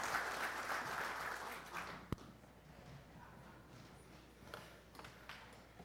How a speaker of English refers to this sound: Everyone in the congregation, stand up, please. Come on. Stand up. Without y'all, this trip wouldn't have been possible, so give a round of applause for yourself.